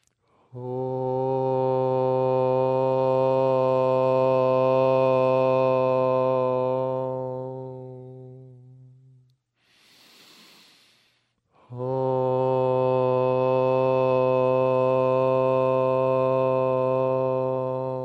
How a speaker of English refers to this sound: Bring your hands to your heart and close your eyes. We're going to make a simple sound, Om. Again, if you got people in the house, cats, dogs, don't be embarrassed. Let them hear it. Let's sing out this simple sound.